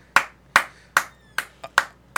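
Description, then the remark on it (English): Seven crisp hand claps in a fairly steady rhythm, about one every half second with one quick extra clap near the end. Moderately loud, with no voices. “We don't need to clap.”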